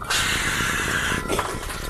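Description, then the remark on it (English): A voice imitates a heavy stone door grinding open after a rounded rock is stuck in and twisted like a knob: a steady, raspy, breathy scrape lasting over a second, then a brief rougher shift before it trails off. “Phineas leans down, picks up this rock that's very rounded and has some intricate thing and a little bit of a pole on it, and he sticks it in. It turns a green, and then he twists it, and the door goes...”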